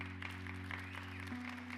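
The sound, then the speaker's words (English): A short burst of audience applause, a dense, steady patter of clapping at moderate volume over a constant low electrical hum, with no voices. “I don't say that for applause.”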